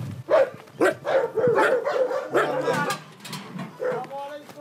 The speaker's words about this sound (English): Dogs bark in greeting on the farm of Omar Bisharat in the northern Jordan Valley.